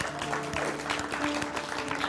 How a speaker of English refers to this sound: Honestly, yeah, give the Lord a round of applause. Come on.